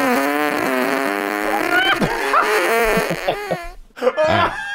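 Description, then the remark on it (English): A long, squeaky, tight fart with a strained, buzzy, whistling tone that wavers in pitch, breaking into a few shorter sputters toward the end, loud with no talking. “I called that one a tight squeeze. That's almost a fart that only dogs can hear.”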